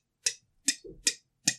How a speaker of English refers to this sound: And the camera pulls back, and there's Byron just sitting at his desk, twirling a pen, just staring at a clock as you hear it.